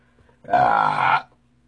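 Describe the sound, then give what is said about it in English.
A single loud, drawn-out burp after drinking Heineken beer, lasting under a second, rough and throaty with a low, buzzing tone, standing alone with no talking around it. “I just Chewbacca'd all over you guys. That's that Heineken I told you I was sipping on earlier.”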